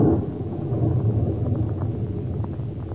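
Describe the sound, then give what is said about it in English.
A loud, deep rumble of thunder from a lightning strike quite near rolls on steadily for several seconds, heavy and close, with no voices over it. “Good heavens, that lightning must have hit quite near here.”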